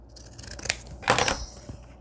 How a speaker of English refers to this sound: Okay, I need to cut some sides off of here. Let's just cut these off with this.